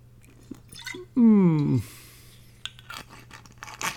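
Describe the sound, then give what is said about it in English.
Sweet red wine glugs out of a bottle in a short, loud burst of about half a second, giving a hollow, resonant gurgle, followed by a soft hiss and scattered light clicks and taps. “I have a bottle of wine here that I'm trying to finish.”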